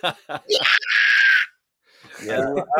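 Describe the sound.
A man's voice lets out a loud, harsh, raspy scream for under a second, imitating a heavy metal vocalist, with brief vocal sounds before it and murmured talking after a short pause.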